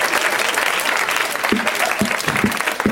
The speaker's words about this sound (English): It's like you won a bonus round or something. Yes. We just gave you an applause for knowing a movie you've been in.